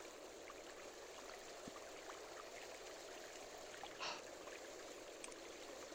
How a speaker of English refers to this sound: It's dark, you can hear the rushing of the Tidewater, and the word Sardina still echoes across the dark, black rocks of this room.